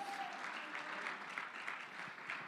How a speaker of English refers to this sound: Oh, clap your hands and make a joyful noise unto the Lord.